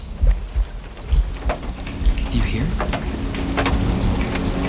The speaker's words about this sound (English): The rain is stopping.